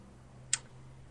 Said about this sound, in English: The clock is ticking.